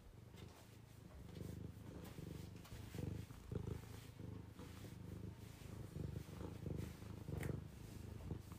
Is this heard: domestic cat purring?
yes